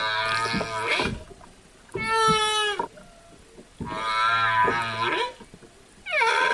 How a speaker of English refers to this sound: But the ocean is full of sound. Until recently, it was full of the sounds of millions upon millions of whales talking, singing, chattering to one another.